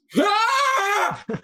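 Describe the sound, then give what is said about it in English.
A person voices a loud, drawn-out imitation scream lasting about a second, its pitch swelling upward then sagging, followed by two short breathy vocal bursts. “You three and Khalil awaken in the middle of the night to the sound of a scream.”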